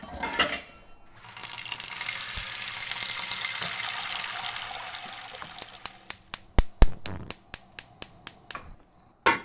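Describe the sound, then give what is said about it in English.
A tap runs steadily for several seconds, a broad rushing hiss of water pouring into a cooking pot being filled to boil for pasta, then stops and gives way to a quick series of sharp clicks. “while we wait for this water to boil”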